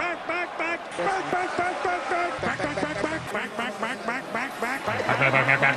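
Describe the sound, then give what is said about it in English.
A flock of ducks quacks loudly and continuously, their nasal calls overlapping in quick, busy bursts for several seconds, full, with no pause. “Go Ducks. That's what it sounds like.”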